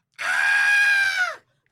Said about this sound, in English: A blood-curdling scream coming from the shop. Goodness gracious.